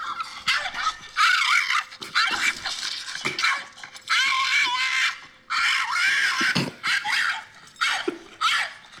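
A dog named Napoleon lets out a series of loud, shrill, dragon-like screeches in repeated strained bursts separated by brief pauses, with no talking over them.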